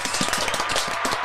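A round of applause for Moses: dense, steady clapping from a group, many overlapping hand claps forming a bright, even wash of sound with no voices.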